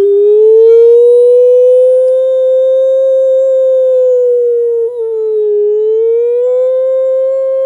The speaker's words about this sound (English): It was 1939. when the Nazis invaded Poland. You heard the air raid sirens.